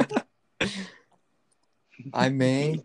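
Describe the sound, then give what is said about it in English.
A couple of short, soft coughs or throat-clearing bursts, a pause, then a longer voiced, drawn-out vocal sound, with a faint click in between, as ASMR. “We can just quell the silence with soft coughs and whispers fire.”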